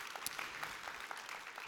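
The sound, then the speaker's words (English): A church crowd breaks into applause, a dense, steady patter of many hands clapping at once with scattered sharper claps poking through, sustained and even in loudness with no voices. “You can clap for that.”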